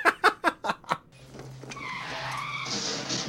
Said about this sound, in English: her notification sound when the analysis machine is finished is a car crash. I don't know why. And the subtitles inform us of this, that it's a car crash. I have no so idea I why she does that. So I thought something had run into the museum.